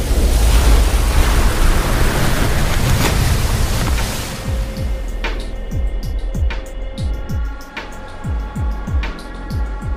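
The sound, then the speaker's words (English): A loud, rushing tide of the river Styx, the river of the underworld, surges for about four seconds, then recedes beneath rhythmic low thuds and steady ringing tones that carry on to the end. “It's a river, like in the old myths, between the world up top and the world of the dead, the underworld.”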